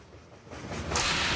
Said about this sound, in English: Oh, there's whips, too.